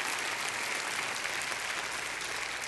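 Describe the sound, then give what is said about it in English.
An audience bursts into steady applause, a dense, even wash of many hands clapping that holds at a constant level throughout, with no voices standing out. “If you believe that, put your hands together and let's give him one more applause.”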